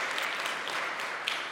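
An audience applauds together, a steady wash of many hands clapping at moderate volume with no pauses, filling the room evenly throughout.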